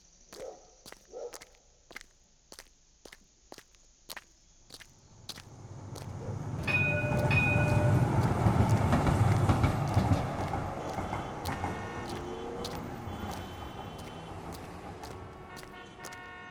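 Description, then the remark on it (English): Street ambience in Brunswick West: crisp footsteps tap steadily as someone walks down the street, then a heavy vehicle rumble swells in and rolls past loudly, with faint squealing tones, fading slightly toward the end. No one speaks. “Walking down the street, I come across the old Brunswick West car garage run by Katrina Apollo.”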